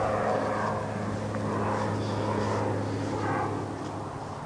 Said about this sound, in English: The drone of Interstate 5 over the ridge is constant, and every 15 minutes a jet leaves nearby SeaTac. This is not a quiet resting place.